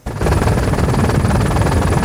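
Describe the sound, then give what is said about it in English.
A medical helicopter, crewed by critical care paramedics caring for patients, roars steadily at Vancouver General Hospital's trauma unit in BC, its dense low rotor chop and engine whine filling the sound without pause after a brief quiet start; no one speaks. “The critical care paramedics, which is the crew in the helicopter taking care of the patients, which just put them on a stretcher and hurry to this door here.”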